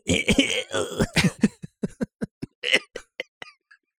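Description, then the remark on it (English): A harsh, breathy, slow intake of air leads into a coughing fit: about a dozen short coughs in quick succession that grow sparser and fainter toward the end, with no talking. “I'm going to go with inhale slowly and coughs.”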